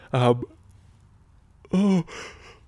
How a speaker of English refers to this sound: Sure, that was a good yawn. Fuck. I might have a nap.